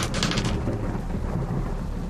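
A thunderstorm roars close and loud, with a deep rolling rumble of thunder over a steady hiss of rain, brighter crackling at the start before settling into a continuous low growl.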